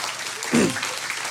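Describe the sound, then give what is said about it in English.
A church audience applauds the student pastor after students returned from camp, a dense wash of many hands clapping at once, steady and fairly loud, with a brief voice-like swell in the middle. “Give him a hand, guy.”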